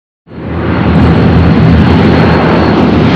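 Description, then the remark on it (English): After a brief moment of silence, the loud, steady roar of propeller warplane engines swells in and keeps droning without a break as planes land at United States Army Air Force Station 186, Thurlow, England, on April 27th, 1944. No voices. “Jack stood over by the control tower among many other airmen who were waiting for the other planes to make their landings.”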